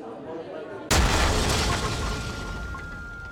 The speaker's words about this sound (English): A massive explosion has ripped through a busy cafe in the Moroccan city of Marrakesh, killing at least 15 people and wounding 20 others. The Argana restaurant on Jamaa El Fina Square is popular with tourists.